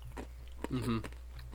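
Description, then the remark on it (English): Crunching of macadamia nuts being chewed, a few sharp crackly bites spaced out over a steady low hum, with someone making an appreciative humming sound midway. “You know, it's got like the perfect amount of crunch.”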